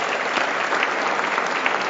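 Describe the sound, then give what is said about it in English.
A room full of people claps steadily for Marie-France Lalonde, MPP for Ottawa Orleans and parliamentary assistant. The applause is a dense, even wash that holds at the same loud level from start to finish, with no voices standing out. “Please give her a round of applause.”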